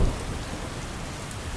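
Steady, dense rainfall from hurricane weather hisses evenly throughout, with a low rumble of thunder swelling briefly at the start beneath the downpour. No voices are present.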